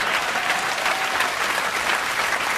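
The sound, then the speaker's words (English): A crowd breaks into steady, dense applause, many hands clapping at once in a continuous wash of sound that holds at an even loudness throughout. “Jesus, those seals. Clapping for the fish.”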